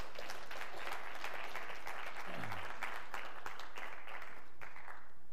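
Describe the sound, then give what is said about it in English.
An audience at Neighborhood Church gives the Lord a hand clap of praise after a prayer. Sustained applause, with dense overlapping hand claps for several seconds, steady and moderately loud with no one speaking. “And if you want to give the Lord a hand clap of praise, you can do so as well.”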